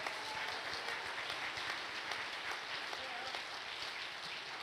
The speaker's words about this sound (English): Oh, clap your hands to the Lord.